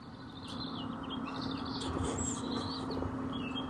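Birds chirp and sing outdoors, heard through an open window, their calls overlapping continuously over a steady low hum of ambient background noise, with no one speaking.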